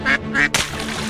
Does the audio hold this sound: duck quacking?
yes